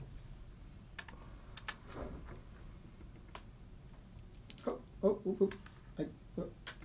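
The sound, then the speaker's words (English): Computer mouse clicking: scattered, irregular sharp clicks, fairly quiet, with a brief burst of faint voice sounds toward the end. “I keep on clicking somewhere else.”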